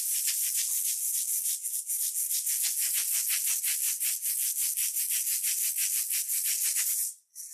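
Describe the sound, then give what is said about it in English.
A ritual hand rattle shaken steadily for several seconds to 'rattle in' during a spiritual session, giving a bright, hissy swish pulsing about four times a second, then stopping abruptly. No one speaks. “Actually, I'm going to do a slight little rattle in.”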